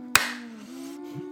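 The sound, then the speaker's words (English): One sharp, loud clap, as if two people clapped in unison, rings out once and then fades, leaving a steady low hum underneath. No one speaks. “Can you Are clap with me? To do it together?”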